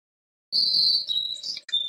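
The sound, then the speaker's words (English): After a half second of silence, birds sing in Upper Ledworth, birdsong also heard inside the TARDIS, in bright, high-pitched warbling whistles that slide and shift between notes, holding fairly loud for the rest of the moment over a soft, low rumble. “Well, the, you know, it was such an easy way to do it in the Upper Ledworth to oh, we hear birds song and then they fall asleep.”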